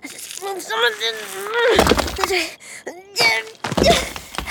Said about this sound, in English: That sounds hollow! Hollow metal! Okay, there's something under here.